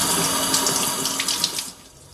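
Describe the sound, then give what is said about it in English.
Tap water runs in a steady, hissing stream, with splashy bursts as raw chicken is rinsed under it, then cuts off and fades near the end. “Researchers found when people rinsed raw chicken and then prepared a salad, 26% transferred bacteria from the chicken to the lettuce.”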